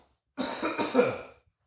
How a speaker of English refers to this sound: Excuse me, I'm fighting off a cold right now. Oh, I promise, it's not COVID. I hope not. No, I'm just kidding. I got tested for it earlier day. Hey, God, man, I got this cough right now. You guys got to forgive me. Hold on.